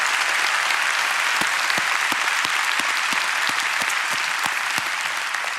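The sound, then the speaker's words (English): An audience applauding steadily, a dense wash of many hands clapping at once with a few sharper individual claps standing out, sustained and fairly loud throughout. “Let's give them an applause today.”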